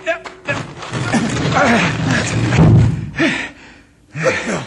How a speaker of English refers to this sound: A tunnel. I thought so. That rock swung open just exactly like a trap door. Perfectly balanced. The ancient Aztecs built those tilting doors to hide the entrance to the mines.